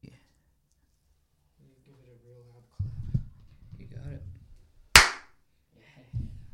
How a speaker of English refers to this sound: Yeah, it's a nice one. It's a nice fucking clap.